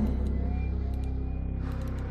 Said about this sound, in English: There are hundreds and hundreds of cars that drive by 657 Boulevard each day. Maybe I am in one.